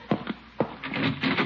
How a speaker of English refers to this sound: who's trying to break down the door? Yeah, I'm coming.